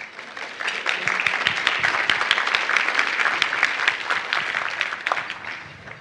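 A crowd applauds steadily for several seconds, a dense wash of many hands clapping at once, fairly close and loud, with no one speaking over it.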